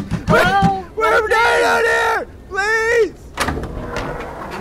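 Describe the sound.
Frantic pounding on a door, heavy thuds mixed with loud, desperate yelling from two voices shouting over each other, close and urgent, trailing off into muffled knocking and rustling.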